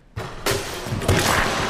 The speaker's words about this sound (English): because he holds on to the rim and the rim comes down and he smashes it into the wood behind him. It creates this great sound.